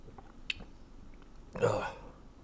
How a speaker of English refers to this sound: Hold up. your loving host needs a sip of coffee.